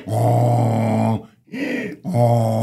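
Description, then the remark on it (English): A person imitates a donkey's bray: a long, low, droning haw, a short higher-pitched hee, then another low haw, loud and close with no other speech. “And the donkey brayed.”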